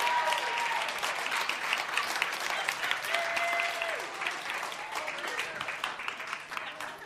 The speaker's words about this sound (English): All right, would you give our actors a rousing round of applause?